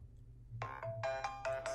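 A mobile phone ringtone plays a bright, repeating electronic melody in short tonal bursts, clear over a low background hum, with no one speaking.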